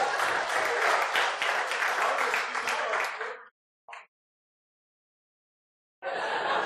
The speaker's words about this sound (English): Everybody give my dad a round of applause.